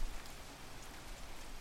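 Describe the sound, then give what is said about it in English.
Light rain falls steadily at 3 a.m. in a town, a soft, continuous patter, a gentle hiss of drops with no voices and no change in intensity across the short stretch. “The rain came down lightly at first, but soon picked up to a full-on downpour.”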